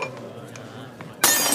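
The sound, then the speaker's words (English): A quiet hum gives way to a sudden, loud crash of a drinking glass shattering, the bright splintering burst filling the final moments. “Hand me that glass.”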